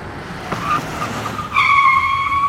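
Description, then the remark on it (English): A car's tires screech loudly as it skids to a stop, a sustained high-pitched squeal that swells midway and holds steady, with no voices present. “Ah, no time to admire the car.”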